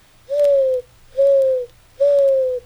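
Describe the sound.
A human voice imitates a dove's coo with three steady, smooth hooting notes in an even rhythm, each about half a second long, fairly loud with no other sounds.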